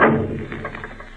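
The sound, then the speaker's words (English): A heavy wooden trap door in a house, closed by twisting a post to the left, slams shut with one deep, loud thud that rings out and fades over about a second, leaving a low rumbling resonance behind. “Close that trap door! Close it!”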